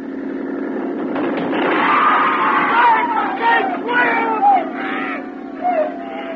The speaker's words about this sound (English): you ran down that boat. Yeah, I know. There were women on it. And kids.